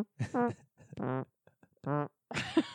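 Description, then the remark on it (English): A voice makes a quick series of mouth noises, including a buzzing, lip-flapping fart imitation among short vocal bursts, fairly loud with brief pauses between. “Because what you can't hear in all the like newer versions when they like HD released it is it's like cymbals, drum, fart.”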